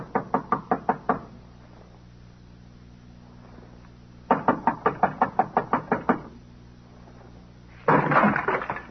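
Two bursts of loud, rapid knocking on a door by police, each a quick series of about eight or nine sharp raps, separated by a pause, followed by a brief rustling clatter.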